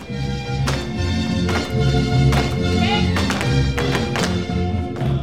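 Women in leather boots (botines) with thick wooden soles studded with nails at the toe and heel stomp in a steady rhythm, each strike a sharp, clacking tap, repeating about once a second over loud, continuous pre-recorded mariachi music.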